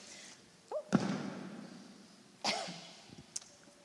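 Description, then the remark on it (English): A couple of dry, harsh coughs a second apart, caused by dust from a major building project in a house, followed by a smaller throat-clearing hack, with no talking around them. “Sorry, I'm having a major building project in my house and it results in a bit of a sort of dusty cough.”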